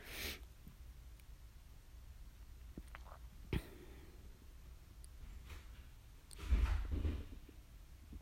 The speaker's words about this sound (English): That was a very weak knock.